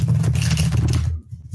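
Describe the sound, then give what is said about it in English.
A quick burst of rapid papery fluttering and rustling as cards are shuffled, with a low handling rumble underneath, lasting about a second before cutting off to near silence. “So I'm going to shuffle these real super quick.”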